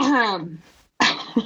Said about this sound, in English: As I coughed.